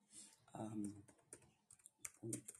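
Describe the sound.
Irregular clacking of keys on a computer keyboard as someone types in a lookup of the betting spread for a Dallas–Giants game, quick bursts of typing, with a voice murmuring briefly in the background between the keystrokes.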